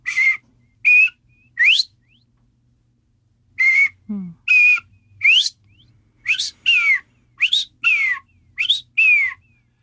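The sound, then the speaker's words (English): A bobwhite quail calls its coveys home in repeated sets of clear, rising whistled notes, loud and ringing, with short pauses between phrases. A brief low thump sounds once in the background. “Yeah, a barred owl is, I mean, it's, and you hear that on a summer evening, and bobwhite quail are calling coveys home that.”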